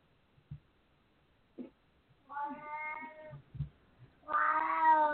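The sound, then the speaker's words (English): A cat meows loudly twice, long drawn-out yowls with a strong harmonic tone, the second louder and more insistent, with a few faint thumps and rustles between them. “So, my goodness, my cat's really going at it today.”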